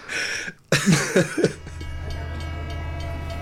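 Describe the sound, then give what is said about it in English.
A train whistle sounds briefly, followed by a few heavy chugging bursts and then a steady rumbling of rolling rail cars, loud, with no one speaking. “Yeah, all aboard the democracy train.”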